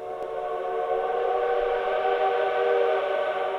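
A train whistle blows in one long, steady, unbroken tone, loud, holding its rich harmonic pitch for the full few seconds with no voices.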